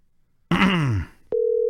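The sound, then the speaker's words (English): A phone line ringing: after a brief descending, groan-like sweep, a steady electronic ring tone starts abruptly and holds at an even, fairly loud level until the end. “Phone is ring.”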